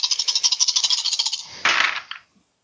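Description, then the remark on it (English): Seven dice rattle in a quick, steady series of bright clicks for over a second, then tumble out in a louder, noisier burst of clattering that stops abruptly. No voices. “I have 7 dice. Let's go force 4.”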